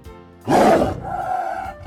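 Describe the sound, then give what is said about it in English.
A tiger lets out a single loud roar lasting about half a second, followed by a lower rumbling growl that trails off, with no one speaking. “A growling prowler. What's larger and more ferocious than a lion? A tiger.”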